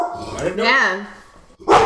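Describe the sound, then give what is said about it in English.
A dog, upset because someone is coming into the house, barks: a drawn-out yowling bark followed by a sharper bark at the end, loud and distinct with no one talking over it. “Ah, the dog is upset.”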